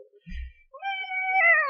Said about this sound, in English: There's a cat.